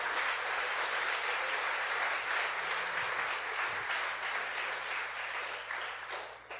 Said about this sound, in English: We have an international life group, and again, we have a few people in the room from it. Round of applause for our international life group.